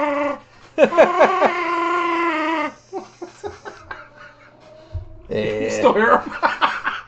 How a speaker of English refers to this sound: Dogs keep sneaking in, especially Pio. Pio just jumps in.